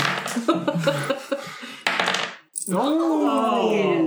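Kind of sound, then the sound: household object, dice being rolled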